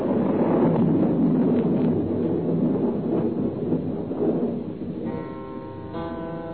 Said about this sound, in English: Wind came. The storm was beginning. Already I knew it would be raining in the estuary.